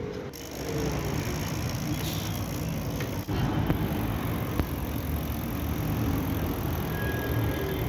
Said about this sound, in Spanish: Son las 7 de la mañana de un sábado, estamos en el puente de Guadua, la puerta del occidente de Bogotá. Como siempre, el tráfico es bastante alto, tanto para carros como para ciclistas.